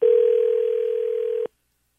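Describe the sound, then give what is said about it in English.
A single steady telephone ringback tone while calling a parent, loud, holds for about a second and a half and then cuts off abruptly into silence. No voices. “Answer the phone. Usually it's mom.”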